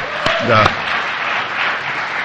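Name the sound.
audience applause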